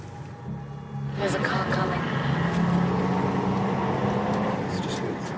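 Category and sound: vehicle, car approaching on road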